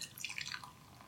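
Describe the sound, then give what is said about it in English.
A short, quiet burst of liquid pouring into a glass, with bright, bubbly splashes whose pitch shifts as the vessel fills, heard alone without any talking. “Why is her getting cancer cause for you to pour a drink?”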